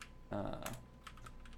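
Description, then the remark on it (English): A short burst of voice is followed by a few quiet, separate keyboard taps spaced unevenly, faint, against a low steady background hum; someone typing in the number of dice for a roll. “Preferably type in the amount of dice I want.”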